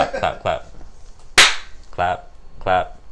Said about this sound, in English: Clap.